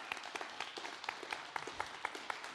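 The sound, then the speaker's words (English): An audience applauds the worship team, many hands clapping in a dense, continuous patter with sharper individual claps standing out, fairly quiet, with no voices over it. “you would give the worship team, just honor them with a hand clap.”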